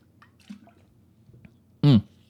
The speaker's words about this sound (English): Hang on here. I'm about to take a big drink of water.